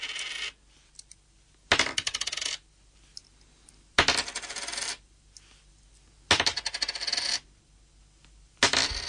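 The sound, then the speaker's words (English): Coins dropped one at a time onto a hard surface, from smallest to largest: about five separate bright metallic clatters, each ringing and rattling briefly before settling, spaced roughly two seconds apart with quiet between. “Smallest to largest coins now.”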